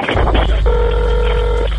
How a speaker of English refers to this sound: The 911 call came in around 10:50 p.m. It's a female hyperventilating. Okay, calm down. Where are you at? And then the phone goes dead.